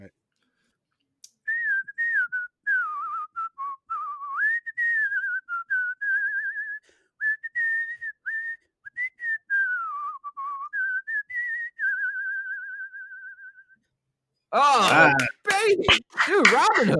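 A person whistles a wandering melody, a tune from the film Robin Hood, for about twelve seconds, steady, ending on a long held note, followed by a burst of laughter or chatter.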